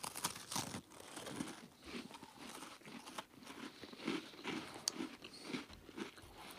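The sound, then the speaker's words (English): Crisp crunching as thin, crispy Tate's cookies are bitten and chewed, a steady run of brittle cracks and crumbly crackles repeating for several seconds with no talking. “Give a chew into the microphone.”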